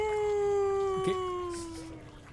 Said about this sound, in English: So anyway, hold on. Is that your cat